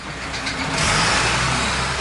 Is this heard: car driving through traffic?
yes